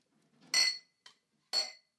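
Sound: glasses clinking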